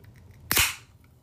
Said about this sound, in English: Oh, I'm gonna open up this can of lemonade. Some ASMR for you.